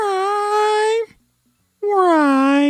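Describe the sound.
A person's voice imitating a cat's meow, recorded backwards and flipped around: two loud, drawn-out, whiny tones separated by a brief silence, with an odd backward swell to each.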